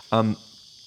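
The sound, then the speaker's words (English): A steady, high-pitched chirring of cicadas in hot summer weather in Sydney, Australia, drones continuously in the background, with a brief burst of a voice near the start. “can you hear the cicadas? It's really hot here in Australia.”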